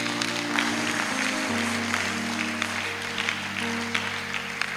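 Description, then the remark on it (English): A church audience claps for Jesus steadily and densely throughout, a loud wash of many hands, with sustained low keyboard or organ notes droning underneath. “You didn't clap for Jesus well.”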